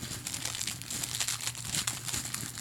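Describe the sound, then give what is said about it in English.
Paper being folded and crinkled, a steady stream of dry crackling and rustling with sharper crisp bursts, continuous for a few seconds with no talking, as a piece of paper is folded into a little trough during a live demonstration. “So you're gonna take your fucking piece of paper. Mm-hmm. You're gonna create, in a sense, like a little trough.”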